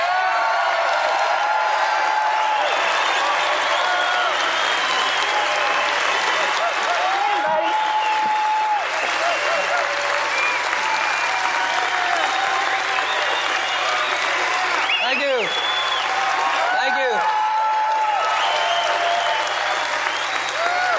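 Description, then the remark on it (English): A large crowd applauds loudly and continuously, with scattered whoops and cheers rising above the dense clapping throughout, sustained at full volume for the whole stretch, as a speaker is welcomed at a distributor training session. “Sounds like you all are just a little bit excited.”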